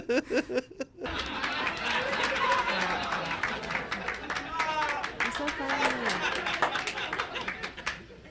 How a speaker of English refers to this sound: Those were real claps, guys, from real people's hands going like this.